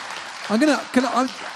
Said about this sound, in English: What a wonderful thing, that obedience to God, that willingness to say yes to him. Can we just applaud that obedience and celebrate what God's doing?